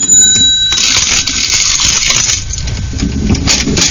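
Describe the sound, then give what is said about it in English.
A cash register sounds off loud: a bright bell ding at the start, then a few seconds of clattering, rattling mechanical noise as the drawer and works churn. No one speaks. “Yes, and that's a cash register for those of you who have never heard that sound before.”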